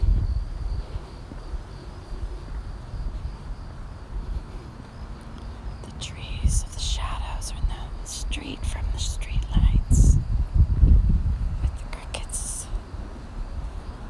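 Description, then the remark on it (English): Steady, thin chirping of crickets hums in the background over a low outdoor rumble, joined midway by breathy, whispery rustling bursts that come and go. “They sure sound like crickets.”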